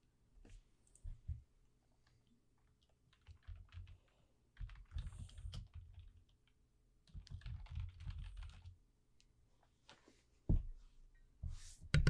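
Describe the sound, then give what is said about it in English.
Bursts of rapid computer keyboard typing as the number 130 is typed in, clattery key clicks coming in several short runs separated by brief pauses, with a couple of sharper, louder taps near the end. No one speaks. “I'm just going to type that in.”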